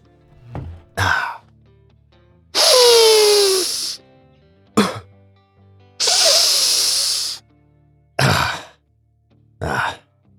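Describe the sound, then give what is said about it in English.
Afrin nasal spray squirted and sniffed: several short, sharp puffs alternate with two longer, forceful inhalations through the nose, all fairly loud with brief silences between and no talking. “Just a little Afrin, folks.”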